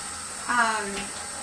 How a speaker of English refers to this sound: But like for example, let me just stop the water back here.